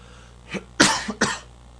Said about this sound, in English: Excuse me, I have this kind of a dry cough.